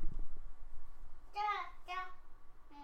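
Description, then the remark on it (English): A small child babbles in two short, high-pitched vocal bursts, slightly distant, with a faint start of a third at the end over low background rumble. “And now we can really hear a little toddler over there.”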